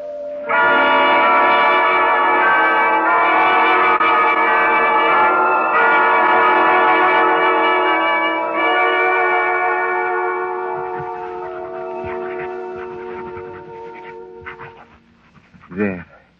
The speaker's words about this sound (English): Those bells. Try to stop those church bells. There is no room for me to think.